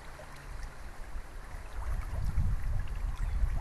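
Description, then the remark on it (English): The Big Blackfoot River in Montana rushes steadily over rocks, a broad continuous wash with a deep rumble that swells louder partway through. No voices, just the water. “The waters that haunted Norman MacLean were those of the Big Blackfoot River, which flows from the heights of the Montana Rockies into the Clark Fork of the Columbia River, just east of MacLean's hometown of Missoula.”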